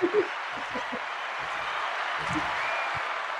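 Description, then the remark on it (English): A round of applause: a steady, dense wash of clapping that holds at an even level for a few seconds, with faint low murmurs of voices underneath. “gives you a round of applause.”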